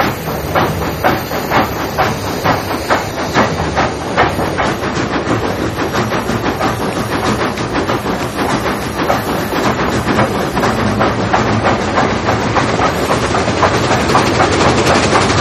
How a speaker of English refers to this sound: what lies ahead is one of the longest, toughest railways on Earth. An extraordinary 3,000-mile journey for a locomotive that first turned a wheel over 80 years ago.